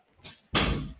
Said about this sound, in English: Hold on, let me close my door.